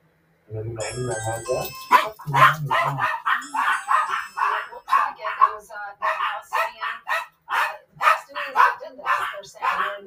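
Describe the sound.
Dogs barking in the room in a loud, rapid, continuous series of sharp yelps and barks, with voices mixed in underneath.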